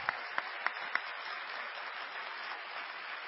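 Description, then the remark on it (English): An audience applauds a speech in a steady, dense wash of clapping, with a few sharp, louder claps standing out at the start; no one speaks. “If we can just give her one more round of applause for that awesome, awesome speech.”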